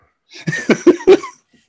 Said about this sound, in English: I'm sorry, by the way, I do not have COVID. I just have a chronic ability to sniffle and cough my way through life.